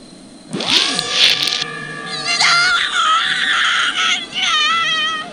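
A woman's loud, shrill horror-film scream with a loud music cue, wavering and breaking in pitch across several sustained bursts, rising and faltering for about five seconds with no talking over it.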